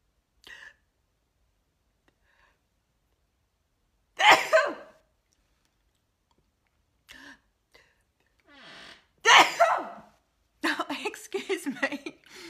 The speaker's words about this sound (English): I don't often do that on a live. I'm a very loud sneezer, sorry.